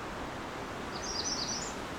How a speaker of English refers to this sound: And for the last half hour or so, I've been listening to this Magnolia Warbler. It has been singing pretty much nonstop. It's a male. Grabbed a couple photos of it. Seems to have a fairly tight territory here. Not really moving around a lot.